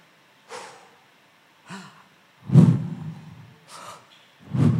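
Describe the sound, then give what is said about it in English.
A person takes several audible breaths in and out, in about five breathy bursts. The later breaths are louder and heavier, with short silences between them. “But the actual word Y-H-W-H is a Hebrew definition of breath, which means Y-H taking in breath, W-H breathing out.”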